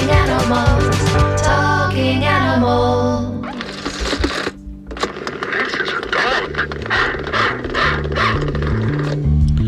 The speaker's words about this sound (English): This is a dog indeed.